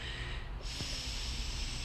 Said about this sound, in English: breathing in, I've got one nostril covering.